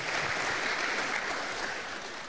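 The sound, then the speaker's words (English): An audience claps for themselves steadily, a dense wash of many hands at a fairly even loudness throughout, with no voices heard. “Clap for yourself.”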